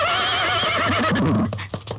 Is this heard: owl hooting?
no